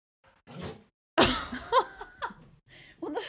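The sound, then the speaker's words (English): A dog lets out a sharp, explosive sneeze, followed by a few short snuffling bursts and what sounds like soft laughter. A faint breathy noise comes just before. “The dog did a sneeze and then my microphone stopped working.”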